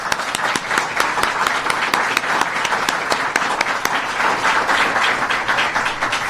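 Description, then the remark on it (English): A steady round of applause from a sizable crowd welcoming a law enforcement veteran, dense overlapping claps at a consistent loud level for several seconds with no voices standing out. “And if we could start quickly, I'd like to give him a round of applause.”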